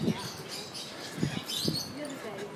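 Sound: birds tweeting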